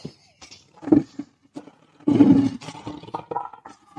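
A lion roars: a short growling burst, a brief pause, then a louder, fuller roar that trails off into low, rumbling grunts. No one is talking.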